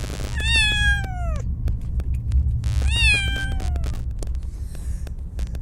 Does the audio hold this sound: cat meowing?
yes